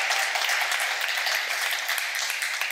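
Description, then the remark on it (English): A crowd applauds steadily, a dense wash of many hands clapping at once with no distinct individual claps standing out, holding at an even loudness throughout. “Go ahead and clap. That felt good right there.”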